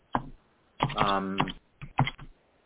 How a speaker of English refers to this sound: What is this? Sorry? No, just hearing the phoenix? Some typing. I'm sorry, this is confusing. Sorry. I'm so sensitive to noise.